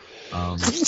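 A single close-up sneeze: a brief voiced intake of breath followed by a sharp, hissy burst of air, loud and on its own with no talking over it.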